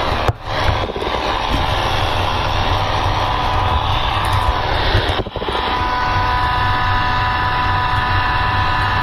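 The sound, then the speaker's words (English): An AM radio tuned around 900, turned up, gives off a loud, steady interference buzz from a switched-on computer keyboard as its keys are pressed, mixed with hiss and a faint high whine, broken by a couple of brief dropouts. No one speaks. “You can sort of hear the buzz.”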